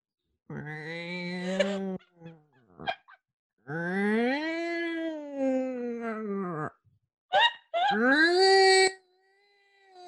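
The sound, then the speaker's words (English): A person imitates a cat in heat with long, wavering, yowling wails, several drawn-out cries broken by short gasps, loud with no other talking. “Make the noise of a cat in heat.”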